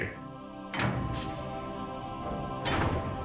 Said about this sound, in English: Almost instantaneously, the doors flew open.